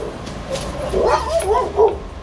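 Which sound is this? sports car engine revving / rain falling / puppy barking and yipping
puppy barking and yipping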